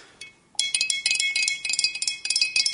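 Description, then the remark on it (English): A spoon briskly stirs a teaspoon of borax into warm water inside a glass jar to dissolve it, making a rapid, continuous run of bright, high-pitched clinks and scrapes against the sides, with no voices. “So put a teaspoon of water in there, give it a good stir.”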